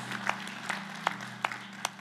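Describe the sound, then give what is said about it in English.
Sparse, scattered applause: a handful of sharp, irregular handclaps from a small audience, fairly quiet, over a steady low electrical hum, with no one speaking. “Yeah, give it up for Paulus.”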